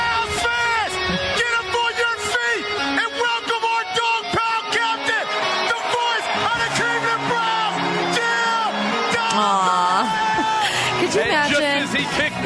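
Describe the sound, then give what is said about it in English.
A large stadium crowd cheers wildly and without a break after a celebrity smashes a guitar before the game, packed with overlapping whoops, yells and shouts from many voices, loud throughout. “Jim Donovan has smashed that guitar, and this crowd is going nuts”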